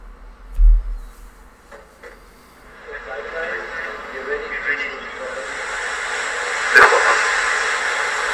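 A German-made vertical takeoff and landing aircraft lifting off: after a low thump, a broad hissing engine roar builds steadily and holds loud and sustained, with one sharp crack near the end.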